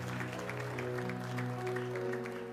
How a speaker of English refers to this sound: Somebody give Jesus a hand clap of praise right now in this place. Amen. Give Jesus a hand clap.